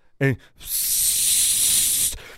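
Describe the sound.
A voice imitates a car's turbos spooling as the accelerator pedal is floored: a short voiced burst, then a long, steady, bright hiss lasting about a second and a half before cutting off abruptly.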